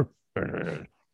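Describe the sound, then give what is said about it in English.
A person imitates a dog with one loud, gruff bark of about half a second, preceded by a brief low vocal sound. “Just barking.”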